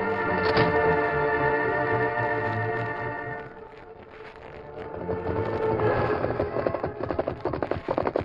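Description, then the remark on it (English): Horses' hooves clip-clop in a quick, steady rhythm as riders set off for town, growing more distinct toward the end, beneath sustained dramatic music that swells and fades. “The horses are over there, Glenn.”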